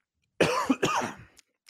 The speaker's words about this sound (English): I hate when I don't get to the mute button. I hate it because nobody wants to hear me cough.